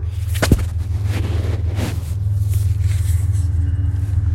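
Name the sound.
train passing by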